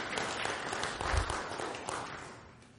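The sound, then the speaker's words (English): A church audience applauds the worship band after the worship, with dense, steady clapping that swells briefly near the middle and then gradually tapers off, with no speech over it. “And I think you should give the band a round of applause, honestly, if we can call them a band.”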